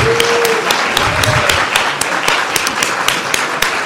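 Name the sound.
round of applause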